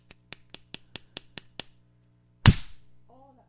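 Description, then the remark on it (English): Seven quick, light slaps land in an even, rapid rhythm, then after a short pause one much louder, sharper swat rings out, followed by a faint brief vocal sound. “Are you ready for some swats?”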